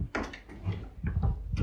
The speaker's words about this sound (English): I opened the door for you then